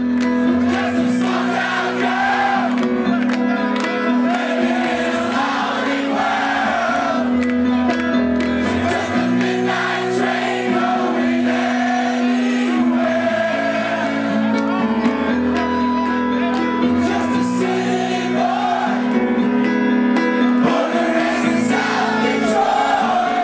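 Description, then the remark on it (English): A crowd of 2,500 college students in Jamaica sings and screams along to a song at full volume, the massed voices loud and continuous over the music for the whole stretch, with no pauses. “there's 2,500 college kids screaming at the top of their lungs to …”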